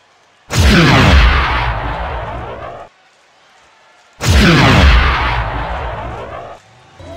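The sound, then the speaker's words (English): Two powerful starting plasma cannon blasts, fired by officials to start a race, go off a few seconds apart, each a loud, booming burst with a roaring, whooshing tail that fades out. No voices accompany them. “The officials have fired the starting plasma cannons, and they're off!”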